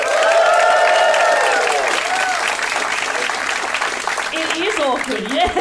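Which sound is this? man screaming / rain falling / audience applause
audience applause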